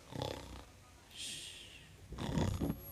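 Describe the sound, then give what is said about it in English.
A person vocally imitates sheep snoring in the fields on a quiet, dark night: a short snorting snore, a soft hissing breath out, then a longer, louder, rougher snore. “It was quiet and dark, and the sheep were snoozing.”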